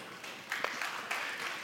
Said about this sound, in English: You guys are getting better at clapping, but it still feels like a golf clap. It's all right. Maybe you're all golfers.